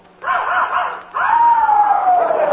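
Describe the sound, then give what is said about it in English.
A puppy yips and barks, loud and insistent: a quick burst of high-pitched yaps, a brief pause, then a longer, drawn-out yelp that slides downward in pitch. “He's a minor. I mean, he's only a pup. Shut up, Tiger.”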